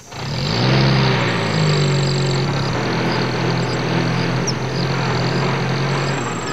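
At night in 1947, a motor vehicle carrying the coterie of Ramanuj Pratap Singh Deo, the Maharaja of a local region, rumbles into the jungle, its engine a steady low droning hum with a slight rise in pitch as it revs, over a constant hiss of background noise.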